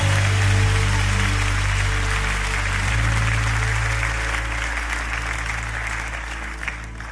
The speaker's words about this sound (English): When you clap your hands, you unblock your pride. Come on, unblock your heart. Give God praise in this place.